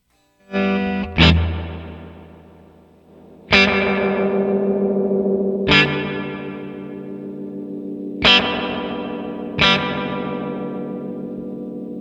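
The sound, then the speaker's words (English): Electric guitar chords played through a VVco reverb pedal, struck about five times, each swelling into a long, washy reverb tail that lingers and blends into the next, giving a spacious, ghostly ambient sound with no voices. “Ghostly Reverb Pedal Envelops Us”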